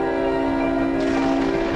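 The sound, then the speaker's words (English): A loud, sustained train whistle blares steadily with layered harmonic tones, holding for the whole moment with a slight rise in brightness partway through, no voices present. “It sparkles harmlessly against the electro field, And in response, there is a train whistle noise.”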